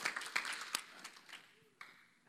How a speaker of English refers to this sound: So, yeah, we clap for that. That's powerful.